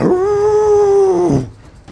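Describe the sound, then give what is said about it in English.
A single loud howl holds a steady pitch for over a second, then slides downward and cuts off, followed by quiet. “Skid flies with a howl.”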